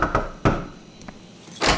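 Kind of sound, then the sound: household object, knocking on a door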